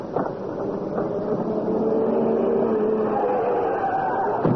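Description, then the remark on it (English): A car engine roars steadily and loudly, its tone rising slightly as the car approaches fast, filling the whole stretch with a continuous rumble and no voices. “What's that? It's a car.”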